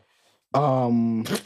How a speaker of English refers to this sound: Did you sneeze? Bless you.